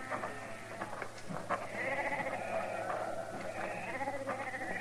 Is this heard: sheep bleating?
yes